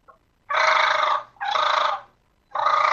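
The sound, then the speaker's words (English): Three loud, raspy rolling bursts of a turkey fighting purr, blown hard on a diaphragm mouth call with a tongue roll, each lasting about half a second with short pauses between and no talking. “At the end of the day, get the tongue roll, the R in Spanish, and then lay the call in your mouth. And blow it hard, like you would envision a fighting purr almost.”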